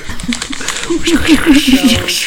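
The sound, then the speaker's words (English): A man's voice imitates a crinkling plastic bag, making a crackly rustle broken by a quick run of short voiced pulses that lasts about two seconds. “can you sound like a plastic bag?”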